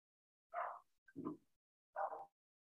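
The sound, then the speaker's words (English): Three short dog barks in a loose rhythm, each a quick burst about half a second apart, fairly faint against a quiet background. “And just as if perfect timing, my dogs are barking.”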